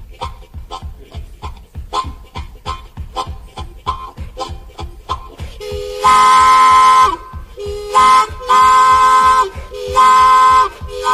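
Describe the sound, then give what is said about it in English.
A steady, breathy chugging rhythm builds, then an imitated freight train horn wails in several loud, sustained blasts over the continuing chug, piercing. “Train time, and roll on down the line at freight calling.”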